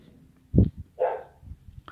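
A dog barks a couple of times, short sharp woofs followed by a higher, whining bark, with quiet background noise in between and no talking.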